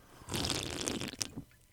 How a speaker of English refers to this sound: I could smell and taste that slurp that you did. It was so authentic.